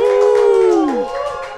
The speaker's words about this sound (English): Woo! So the entire panel is here. Clap it up!